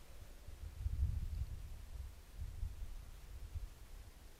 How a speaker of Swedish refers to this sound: Nu blåser det lite, och jag kan tänka mig att vinden slår mot mikrofonen också ibland.